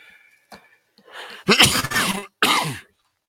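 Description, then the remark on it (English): A loud cough from someone a little under the weather: a rough throaty buildup followed by two harsh hacking bursts in quick succession, with no talking around it. “Excuse that cough in there.”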